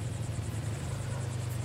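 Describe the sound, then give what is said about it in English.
Two motorcycles approach a bar at night, a distant purr turning into a nearby rumble: the engines rumble with a steady, deep droning hum and a layer of broad noise above it, holding an even loudness throughout with no voices. “A distant purr turns into a nearby rumble. two motorcycles approach.”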